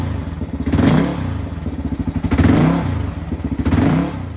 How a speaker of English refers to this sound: And on the complete other side of the spectrum, the big thumper, the KLR 650. Otherwise known as the tractor.